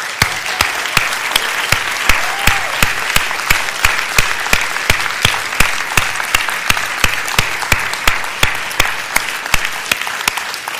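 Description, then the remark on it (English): A large audience applauds veterans who have stood up, steadily and loudly for about eleven seconds, a dense wash of clapping with sharp, evenly spaced claps standing out in a regular rhythm. No one speaks. “If you're a veteran, could you stand up for us so we can clap for you?”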